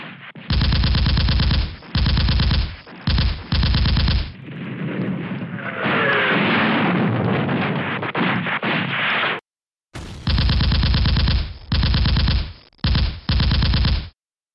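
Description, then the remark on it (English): Loud bursts of rapid machine-gun fire hammer in repeated blocks, broken by a rumbling stretch of heavier artillery fire and booms, then the chattering bursts resume after a brief silence: enemy guns opening up on soldiers pouring out of their trenches. “It was to no avail as his men poured out of their trenches just as every enemy gun opened up on them.”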